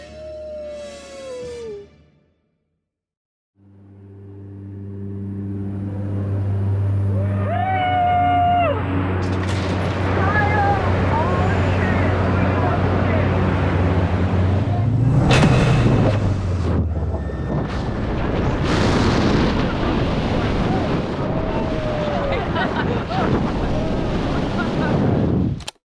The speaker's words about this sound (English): You hear that? Can you tell? We're skydiving. We are, for you, the listener.